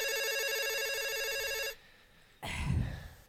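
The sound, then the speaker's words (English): A telephone rings on an outgoing call, a steady warbling electronic tone lasting under two seconds, then a short pause followed by a louder rustling, clattering noise. No one speaks. “It's ringing.”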